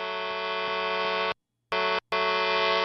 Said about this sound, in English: Yeah. I like the beep.